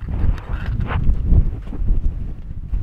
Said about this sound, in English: It was very windy and one of the only days that threatened rain this entire summer, I think.